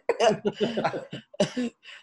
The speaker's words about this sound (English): Coming over to cough on you.